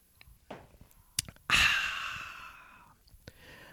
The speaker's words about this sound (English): Coffee sip break. Hold on. Sipping my coffee.